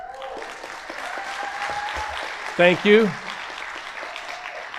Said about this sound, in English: I was not intending that applause, but I welcome it.